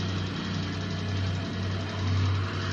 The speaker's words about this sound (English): Here's a rocket engine sound, supposedly. This is the background noise.